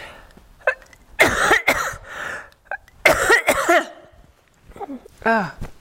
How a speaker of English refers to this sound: Okay, let me clear my throat again, and then I'll say goodbye.